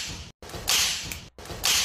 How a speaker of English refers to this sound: Damn, dude, that's he wasn't expecting the fact that he was just going to get slapped so damn hard. Man, I just want to go back to the moment where he gets slapped, like, real quick.